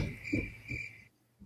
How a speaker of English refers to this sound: Insert crickets, by the way.